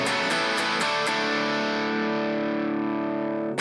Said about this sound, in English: Some sweet guitar tones. It's pretty good, right?